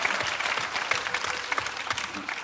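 An audience claps steadily, a dense wash of many hands with no gaps, holding a fairly even level throughout with no voices standing out.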